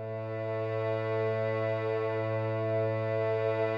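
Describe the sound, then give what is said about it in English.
A harmonium, an air-pumped keyboard instrument originating in India, plays a steady, reedy drone on one low chord without a break, rich in buzzing overtones and slightly wavering, at an even, moderate loudness throughout. “In this piece, I've used a harmonium sound.”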